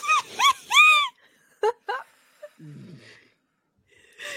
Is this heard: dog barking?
yes